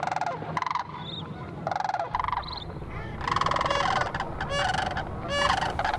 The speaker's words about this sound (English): And of course, late fall is when the sandhill cranes return to the valley for winter. Today, we appreciate their primordial calls.